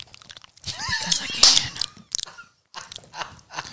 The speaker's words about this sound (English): So sorry. All the flavors. Chewing into the mic.